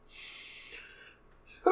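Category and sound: human body sound, sneeze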